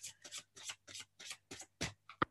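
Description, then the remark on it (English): A deck of oracle cards is shuffled: about seven quick, papery bursts in a steady rhythm, then a sharp tap as the deck is squared. No one speaks. “Give it one more shuffle and see what pops out.”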